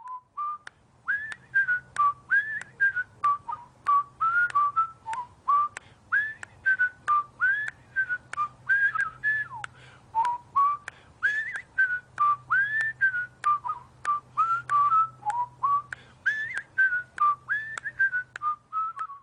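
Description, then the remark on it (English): An elderly man in a plaid suit whistles a bright, bouncy melody while slowly walking along a street, steady and clear for the whole stretch, with short rhythmic phrases over a faint low background hum. No one speaks. “His liver-spotted hands were clasped behind his slightly bent back, and he was whistling the tune from The Andy Griffith Show.”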